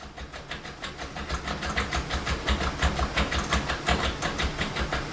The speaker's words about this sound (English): He then begins fiddling with and shaking the doorknob, recreating the noise Nick said that he had heard the morning of the attack.